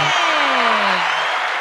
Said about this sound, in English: Look, the crowd goes wild.